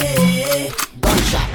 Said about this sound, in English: Cause I'm a soldier that love to fight, and anyone in my path will die today by my AK. Gunshot AK. Gunshot AK. Gunshot AK.